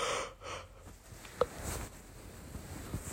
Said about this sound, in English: Oh, excuse me, I'm yawning a lot probably because I just woke up.